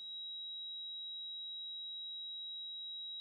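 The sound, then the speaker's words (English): A steady, high-pitched ringing tone, like tinnitus, holds at one pitch for about three seconds, alone and unwavering, after a brief soft rustle at the very start. “I'd say one of the most common is people will say, I have a high-pitched ringing.”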